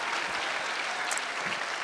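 A crowd claps to welcome a musician as he is introduced, a dense wash of many hands applauding at an even, moderate loudness for the whole stretch, with no voices standing out.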